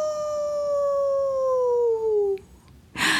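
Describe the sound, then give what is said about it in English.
A single long, clear wolf howl glides slowly downward in pitch for over two seconds before trailing off, followed by a brief burst of noise. “She woke up with a wolf at her door.”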